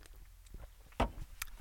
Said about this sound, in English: A sip of beer for my health.